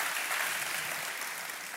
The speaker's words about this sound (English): Amen. You know, it's great. Love it. All the clapping.